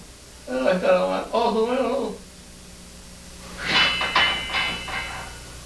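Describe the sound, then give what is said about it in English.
A metal bed frame rattles and clanks in a short burst of jangling noise as a 51-year-old Japanese man, videotaped during a bad dream, swats and kicks in his sleep, after an earlier stretch of wordless voiced cries or groans, with quiet hiss in between. “The metal sound you're hearing is the bed frame.”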